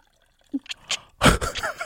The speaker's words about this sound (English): Pass me the vodka. Okay. Can y'all hear this pouring?